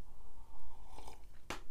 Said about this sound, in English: Let's take a little sip of my tea. I got a nice hot tea going on.